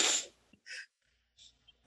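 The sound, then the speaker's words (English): A single loud sneeze bursts out at the start, followed by a few short, breathy sniffs and huffs in the quiet that follows. “We tell each other over sneezes”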